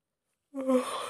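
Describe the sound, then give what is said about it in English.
A single yawn from a speaker at about 9 p.m. starts after a short silence, opening with a brief voiced groan before trailing into a long, breathy exhale. “Sorry, I'm yawning already.”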